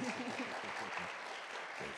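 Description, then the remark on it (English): A crowd claps steadily, dense overlapping handclaps filling the space at a fairly loud level, with a faint voice murmuring underneath. “Y'all can clap.”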